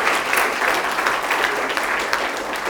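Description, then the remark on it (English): A crowd applauds steadily, a dense, even patter of many hands clapping with no pauses and no voices rising above it. “You can applaud them if you like.”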